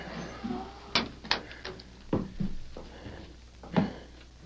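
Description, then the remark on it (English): A wooden peg leg thumps on a floor in a darkened house in a handful of uneven, hollow knocks spaced irregularly, moderately loud, with quiet room tone between them and no one speaking. “Easy with that phony leg, you fool. It's enough to wake the dead.”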